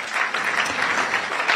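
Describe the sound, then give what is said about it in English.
An audience at Ghana's 2023 National Championship claps steadily after a 70,000 Ghana cedis cash prize for the winners is announced, a dense patter of many hands sustained at an even level for the whole moment, with no voices rising above it. “I thought you would clap for that.”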